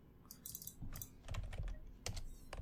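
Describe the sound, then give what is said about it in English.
Rapid, uneven typing on a computer keyboard as someone searches online, a flurry of sharp plastic key clicks with a few heavier thumps, no voices. “I can hear you Googling.”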